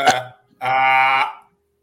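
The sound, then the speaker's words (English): A person who cannot burp tries and fails to force a burp: a quick throaty catch, then a strained, buzzy croak lasting about half a second, with no talking around it. “Try it again. You have to force the bubble down first. Nope. Nope, can't do it.”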